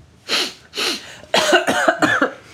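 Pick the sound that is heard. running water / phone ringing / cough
cough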